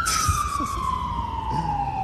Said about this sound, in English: Oh my god, the sirens again, you guys. Feels like I'm back in LA again.